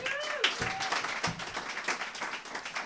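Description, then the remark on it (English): A crowd applauds steadily for about three seconds, a dense wash of many hands clapping with a few high whistles and cheers rising over it near the start, as an audience welcomes someone introduced as Helen Keller. “You know Helen cannot hear that applause.”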